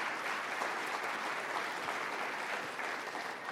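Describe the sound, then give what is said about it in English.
Steady audience applause, a dense, even wash of many hands clapping at a constant moderate loudness throughout, with no voices standing out. “I don't mean to do that because you're not going to clap now.”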